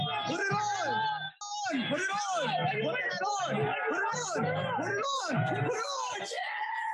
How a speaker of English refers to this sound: Look how much the culture has flipped. Maybe the biggest cheer at Yankees.